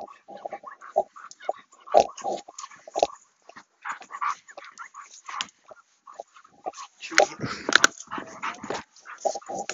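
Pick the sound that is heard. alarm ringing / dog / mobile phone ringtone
dog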